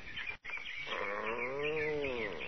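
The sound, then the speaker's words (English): Birds chirp and twitter steadily outdoors at twilight as the sun goes down, then a drawn-out, wavering call rises and falls over the chatter. The calls are clear, with no voices. “Wonder what kind of birds those are.”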